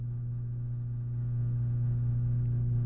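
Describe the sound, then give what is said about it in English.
A huge, very slow home garage door with large springs opening, heard as a steady, low motor drone that holds an even pitch and grows slightly louder over a few seconds, with no voices. “That's our garage door opening.”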